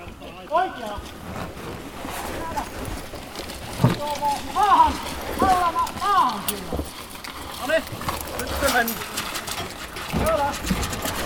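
A flock of sheep being herded outdoors, with many overlapping bleats rising and falling at moderate distance over a steady rustle of trampling hooves and wind.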